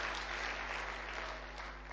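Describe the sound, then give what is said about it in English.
A church crowd claps steadily together to the Lord, a dense, continuous wash of hand claps at even loudness throughout, with no voices standing out above it. “Oh, come on, give the Lord a clap then.”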